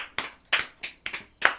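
Around six sharp hand claps in quick, slightly uneven succession, each a crisp bright smack that fades fast, with no talking.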